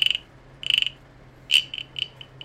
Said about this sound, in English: Rather, I am perplexed as to why my lucky pet cricket has been fervently trying to garner my attention for the past several moments now. What is it, Chirpy? What is it, boy?